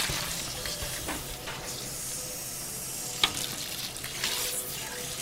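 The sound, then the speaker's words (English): Tap water pours steadily into a pot in a kitchen, filling it up to a knife's height for cooking red beans: a continuous bright hissing rush with a few small clanks and splashes, with no talking. “Let the water run in there, and I fill it up like to this knife.”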